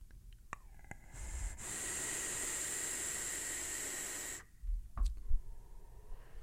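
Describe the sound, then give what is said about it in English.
A steady hiss of inhaling vapor from a Hugs Vape Piper RDA on an old-school AV mech mod lasts about three seconds, then cuts off and gives way to soft, breathy puffs of exhaling. “I mean, listen, it's vaping, you know?”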